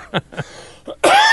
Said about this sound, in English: But once I get coughing, you know, if you listen to the show, you can hear I don't recover fast.